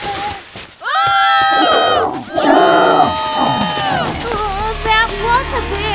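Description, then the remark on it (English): A group of people running out of a tent bursts into loud, sustained screaming and yelling together, rising sharply and holding high-pitched wails for several seconds, with a chaotic crowd-like energy. “I'm going to open the tent, and then we all run out screaming.”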